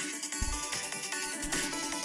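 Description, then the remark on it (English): A bright cash-register "cha-ching" chime plays through a phone speaker, loud, with metallic ringing tones filling the short clip and no voices. “Oh, see, I heard the chi-ching.”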